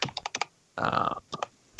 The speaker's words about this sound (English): I can hear you typing, so either mute yourself or actually I think I can mute you.